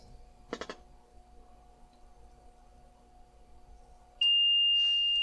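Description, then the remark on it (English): After several seconds of near silence with a faint low hum, a radio station's dead-air alarm, set off by a lengthy period of on-air silence, suddenly sounds: a loud, steady, high-pitched electronic tone that holds unbroken to the end. “See, an alarm goes off.”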